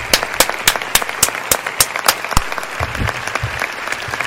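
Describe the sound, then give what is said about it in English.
An audience applauds, many hands clapping together in a steady, dense patter, with a few sharp louder claps standing out in a regular rhythm above the crowd's noise. “Just, yes, keep clapping.”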